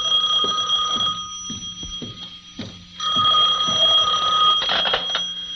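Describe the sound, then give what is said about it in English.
A telephone in an office rings loudly in two long bursts separated by a short pause, its shrill electronic trill sounding with no one speaking. “My substitute secretary hadn't come in yet, but my phone was ringing.”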